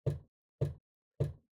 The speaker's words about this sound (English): The wolf was not long before he got to the old woman's house. He knocked at the door.